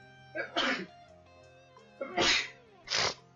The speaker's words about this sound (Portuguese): Espirrei, foi mal.